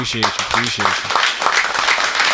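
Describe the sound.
Steady, dense applause with crackling claps runs throughout, loud and continuous, while raised voices cheer over it in the first second.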